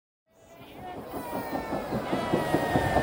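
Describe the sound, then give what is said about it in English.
An elevated commuter train, the holiday train on its first official run on the Orange Line, packed with passengers the day after Thanksgiving, rumbles along at moderate loudness, with a steady whining hum and rhythmic clacking that grows after a brief silence. A murmur of crowd voices blends into the noise. “It's the day after Thanksgiving, and the first official run of the holiday train on the Orange Line is packed.”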